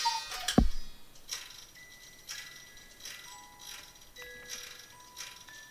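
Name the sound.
cuckoo clock ticking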